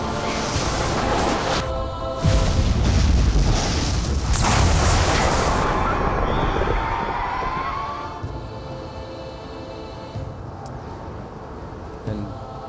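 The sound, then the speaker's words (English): A loud crash of thunder from lightning breaks out, with two heavy booming bursts followed by a deep, rolling rumble that slowly fades over several seconds. “Lightning, innit?”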